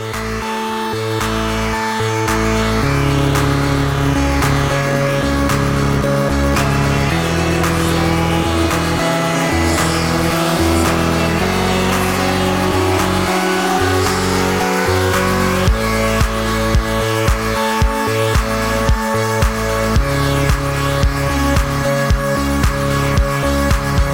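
A dance remix of an indie pop song plays loud and continuous, with layered sustained synth tones, gliding melodic lines and a steady driving pulse throughout, and no one talking over it.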